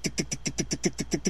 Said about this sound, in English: No, what she needed was a new minivan. Probably. Because did you hear the fucking exhaust on the one she was driving? It was horrible.